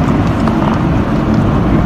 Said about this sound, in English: It's snowing so much. And we're going real like slow appropriately to be cautious on the freeway.